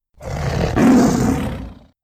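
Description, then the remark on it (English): A loud creature roar, rough and snarling, from creatures fighting in battle, swelling for nearly two seconds before fading, with no voices around it. “And everywhere, snarling, growling, raging, roaring noise.”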